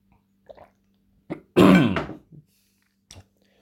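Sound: drinking and clearing throat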